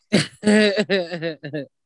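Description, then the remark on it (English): A person lets out a loud, drawn-out run of throat clearing and raspy, voiced coughs, about four hacking bursts in quick succession with no talking in between. “Coughing up blood, if you will.”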